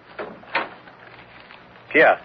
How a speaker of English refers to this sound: You may close the door behind you.